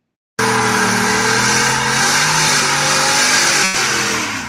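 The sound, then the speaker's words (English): The engine of a brand new 2020 Shelby F-150 Super Snake Sport pickup truck, built in Las Vegas, roars and revs hard during a burnout, loud, with a rough hiss of spinning tires running steadily for several seconds and no voices. “Yeah, burn some rubber, baby.”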